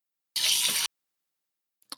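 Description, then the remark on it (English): A single sharp, hissing squirt of drink from a free Gatorade squeeze bottle, like those used for football, squirted into the mouth at a desk, lasting about half a second, followed after a pause by a couple of faint wet clicks. No one speaks. “I just like aggressively grab my bottle and squirt it in my mouth like this.”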